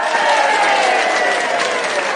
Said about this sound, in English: can we get an applause cue?